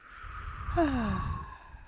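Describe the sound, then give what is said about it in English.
A slow, audible breath, drawn in through the nose and then released through the mouth in a long, soft exhale that trails off gently, with no talking alongside. “Breathe in through your nose. Out through your mouth.”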